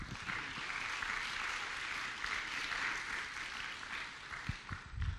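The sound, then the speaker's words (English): An audience applauds for the Lord during a church sermon, steadily for about five seconds, a dense wash of many hands clapping at an even, moderately loud level, with a few sharper claps standing out near the end. “If you receive that, can you give the Lord a good round of applause today?”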